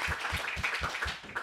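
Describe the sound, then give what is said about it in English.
A crowd applauds Black Rabbit Mead, the venue hosting the event, in a dense, steady wash of claps, with a few louder beats thumping out a regular rhythm underneath. No one speaks over it. “Let's give a big round of applause to Black Rabbit Mead for giving us this space through these episodes.”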